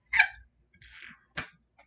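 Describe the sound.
A person growls from the throat in three short, rough bursts, fairly loud, with brief pauses between them and no talking.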